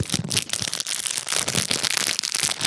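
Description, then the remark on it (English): Book pages being flipped rapidly, giving a loud, crisp, crackling rustle of dense papery bursts that continues for about three seconds with no voices. “Let me just flip through the page.”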